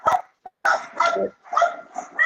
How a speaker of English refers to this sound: Well, here's if you can hear the dog. So I got two Yorkies, right? And they're like 8 and 9 years old, and Yorkies are like, stop.